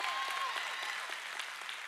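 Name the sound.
audience clapping and applauding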